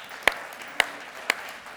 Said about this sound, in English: Amen that. Yeah, we give God a clap. Yeah.